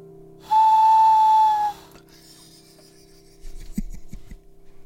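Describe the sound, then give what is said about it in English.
A person imitates an owl with one long, steady, whistle-like hoot held for about a second, loud and level in pitch, followed by quieter rasping and rubbing noises. “She just took herself off to have a word with her owl impression.”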